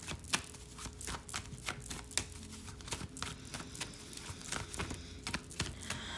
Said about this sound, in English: Let me start shuffling the next deck while I sit with this. Ooh, and then the Nine of Wands flew out from that with the King of Pentacles at the bottom.